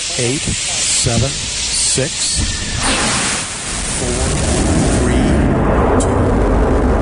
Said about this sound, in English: Firing chain is armed. House suppression water system is armed. Go for main engine start.